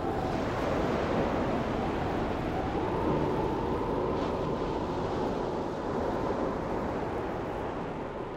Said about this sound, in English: Look at the waves on the sea.